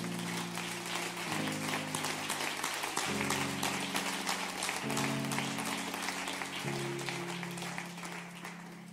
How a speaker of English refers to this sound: I do want to give honor tonight. Pastor and his wife, the bishop and his wife. Could you give them a hand clap?